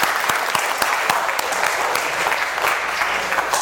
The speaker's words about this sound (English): Let's give these kids a rounding applause.